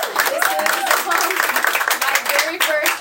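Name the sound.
hand clapping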